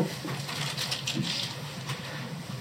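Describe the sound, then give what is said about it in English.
A plastic bag holding a gift crinkles and rustles steadily, with a few sharper crackling bursts as it's handled and pulled open to unwrap the gift. No one speaks. “I don't know how to take the gift, but I'll take it. Okay. This is so nice. Plastic bag.”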